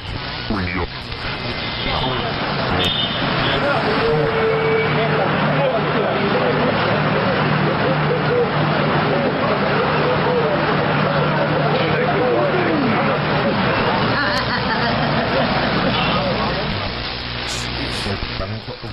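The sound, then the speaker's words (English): A steady wash of overlapping crowd chatter fills a busy public place with lots of people, including children, many indistinct voices blending into a constant murmur, with a brief laugh and a faint bird chirp rising above it. “Lots of, like, a busy place with lots of people.”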